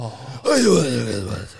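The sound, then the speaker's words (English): A person does an impression of an old Japanese man by breathing heavily, producing one long, breathy exhale with a voiced, groaning edge that starts abruptly and trails off over about a second. “My Japanese impression is just breathing, but it's pretty good.”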